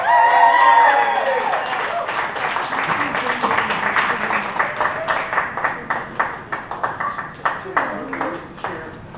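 An audience breaks into loud applause with a few whoops and cheers at the start. The dense clapping gradually thins into scattered, separate claps as it dies down.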